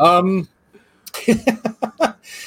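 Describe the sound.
A brief voiced sound, a pause, then a quick run of about six harsh coughs, ending in a breathy hiss, from a voice strained by doing a villain impression.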